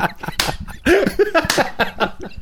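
A sharp, loud hand clap stands out among several other brief, crisp bursts of noise, with short voiced exclamations rising and falling in pitch around it.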